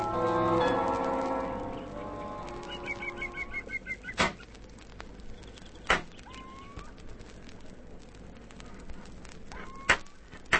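Sharp metallic clanks ring out every few seconds, like someone hammering on metal behind a hut, four loud strikes at an uneven pace over a low hum, after a fading tonal whine.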